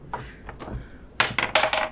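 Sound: dice being rolled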